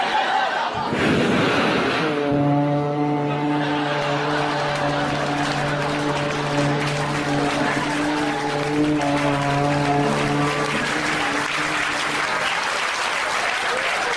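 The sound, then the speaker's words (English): The horn of a 1966 Cadillac Coupe de Ville car blares in one long, steady, loud honk lasting about ten seconds, over a constant wash of crowd applause and laughter. “Well, at least it had a horn in it.”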